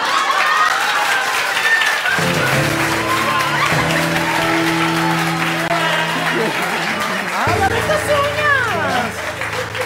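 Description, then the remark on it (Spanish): Sustained applause from a crowd at the end of a programme, a dense steady wash of clapping throughout, with cheering voices and music playing along underneath. “Un aplauso para mí.”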